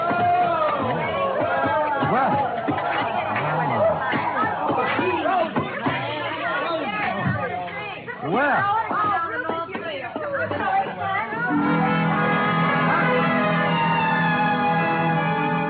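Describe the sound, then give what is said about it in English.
A group back from the ski runs bustles in with heavy stamping footsteps, pulling off gloves and unzipping parkas, with lively overlapping loud chatter, before the babble gives way to a steady sustained tone near the end. “They came stamping in, pulling off gloves, unzipping parkas, and if it hadn't been for the grown-up dialogue, looking all the world like a group of carefree children.”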